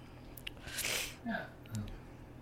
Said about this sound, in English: That's sniffle.